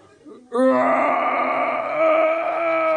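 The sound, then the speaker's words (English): A person imitates a bear roaring in labor: one loud, sustained, strained moaning roar that begins after a brief quiet moment and holds steady for about two and a half seconds. “Pushing in, we hear the roars of a bear giving birth.”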